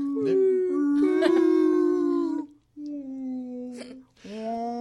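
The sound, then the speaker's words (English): A person voices long, wavering, tonal moans and swooping glides in imitation of a singing whale, three sustained calls with short pauses between them, fairly loud. “How's your whale voice?”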